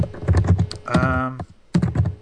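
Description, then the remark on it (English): Rapid, busy typing on a computer keyboard, a flurry of clicks that pauses briefly while a short voiced sound cuts in, then resumes just as quickly. “You can probably hear the frantic typing”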